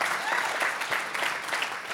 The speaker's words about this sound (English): It is not the location that makes Mission Church special. It's the people that call this place home. Oh, come on, clap today if you're excited about the people in this church.